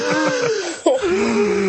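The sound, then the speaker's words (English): A voice imitates heavy, wheezy breathing close to the microphone: strained, drawn-out tones with a brief catch midway, loud and continuous for under two seconds. “Also, I feel like he's trying to cover his breathing on the mic because he's like 50 and overweight with the bombs.”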